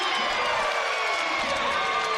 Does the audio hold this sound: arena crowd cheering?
yes